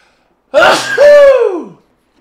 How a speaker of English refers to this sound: Oh, I got to sneeze.